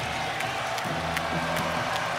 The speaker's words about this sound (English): The Celtic fans here in attendance, they're still here and they're cheering.